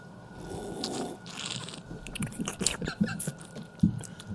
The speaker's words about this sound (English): This is a aged bourbon barrel barley wine. Oh, that's nice. Yeah. Man, it's a big beer. 12.5% by volume. That is heavy. All right, let's all take a sip.